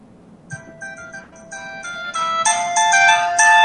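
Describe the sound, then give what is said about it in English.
A melodic electronic ringtone plays from a phone, a series of bright tonal notes that repeat and grow louder and fuller over a few seconds, with no talking. “This is the original version. I use it as a ringtone.”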